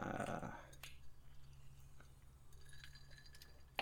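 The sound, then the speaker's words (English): A hard seltzer drink cracks open with a brief fizzy hiss, followed by a few light, scattered clinks of glass in a cheers. Quiet overall, with no talking. “So with that then, I'll pop open this here and cheers, good buddy.”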